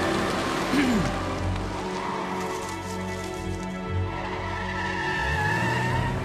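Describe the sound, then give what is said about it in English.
A man gets into his car and drives off on a nippy night; the engine revs and rises in pitch as the vehicle pulls away, with a brief tire squeal, all over a steady background hiss like light rain. “Gets into his car and drives off.”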